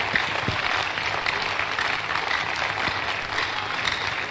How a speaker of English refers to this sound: Clap for Jesus.